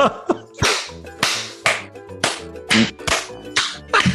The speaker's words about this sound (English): Do you guys know if this clapping actually helps anybody? Or is it just something we do randomly? I enjoy it.